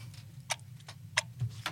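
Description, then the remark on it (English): A clock ticks steadily, sharp clicks falling about every third of a second over a low, constant hum. The ticks are clear, with no voices present. “We need a clock here.”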